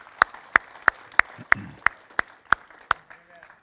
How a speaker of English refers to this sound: Would you give the Lord a clap and just thank Him? Thank You for it, Lord.